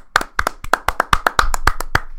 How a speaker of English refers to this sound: Kofi made WrestleMania. Woo! All the crap that he has gone through. He is in the match against Daniel Bryan. Let's just take a minute to give him a round of applause.